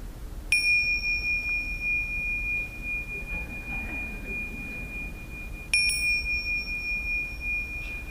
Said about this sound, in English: I have these my bells here. I haven't used them yet to signal the end of our afternoon sessions. I will now ring the bells. lovely Tibetan bells.